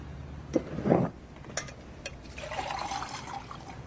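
Water pours into a glass, starting with a few clinks and splashes, then a steady filling sound whose pitch rises as the glass fills. No one speaks.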